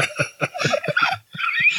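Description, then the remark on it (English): A squeaky pterodactyl toy squeaks in a rapid run of about nine short, raspy bursts, then lets out a longer rising squeal, fairly loud with no talking. “Squeaky pterodactyl toy. You sound like my cat that doesn't know how to meow.”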